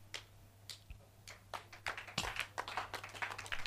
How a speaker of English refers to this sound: If you are clapping, clap, clap and clap better.